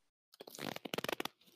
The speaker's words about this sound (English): You farting, so... dude? Keep it in.